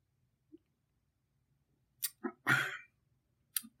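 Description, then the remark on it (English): A few sharp clicks lead into a loud, breathy hiss as a Shiner beer is cracked open, followed after a pause by short, soft gulping sounds. No one speaks. “I don't have a glass even, so I can't share a pour with you, but I will share a sip with you, or a gulp.”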